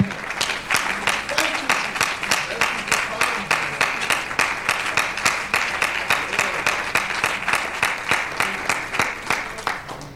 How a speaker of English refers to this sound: Will you clap your hands to the Lord? Will you just praise Him and thank Him for all of His blessings?